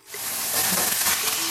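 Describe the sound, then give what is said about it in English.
Chicken pieces browning on their first side in a pan: a steady, dense crackling hiss that swells within the first moments and holds at a strong, even level, with faint pops scattered through it and no talking. “Is it sizzling over there?”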